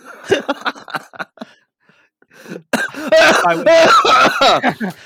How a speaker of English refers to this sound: So that cough I just did really sounds like I am living in Henry the Eighth's time, and I have some kind of consumption.